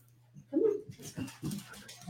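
A new puppy that just came bounding into the room whimpers in short, high-pitched bursts, starting with a louder whine and followed by a few softer yelps, with a low steady hum in the background.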